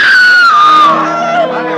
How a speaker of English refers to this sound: A fine summer afternoon at the fair is over. The barbecue fires glow red now in the darkness, and families are rounding up their children and seeking their wagons for the lazy ride back to town. Suddenly, a woman screams.